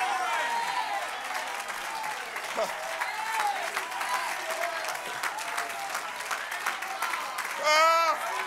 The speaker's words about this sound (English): Somebody clap your hands and shout, send the rain.